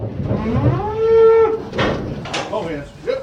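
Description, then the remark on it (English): A cow lets out a long, drawn-out moo that rises and holds before fading, with a second shorter bellow and some clattering noise around it, fairly loud, as cattle are loaded onto trailers for hauling. “It's that time of year when we're loading trailers and we're hauling cattle.”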